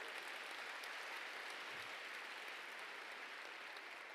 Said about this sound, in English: If you believe it, would you give the Lord a clap offering today?